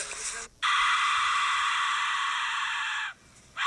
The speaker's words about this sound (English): And so it's called a Aztec death whistle.